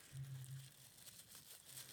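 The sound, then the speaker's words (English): Soft crinkling of tissue paper as a small figure is unwrapped, rustling continuously for a couple of seconds, a dry papery texture with small irregular crackles and no voices. “So this is the same thing, just wrapped in the tissue paper.”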